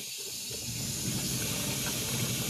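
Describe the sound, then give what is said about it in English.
Water pours steadily into a coffee maker, a continuous hissing rush that holds an even level for a couple of seconds, with no voices. “Just let me put some water in here.”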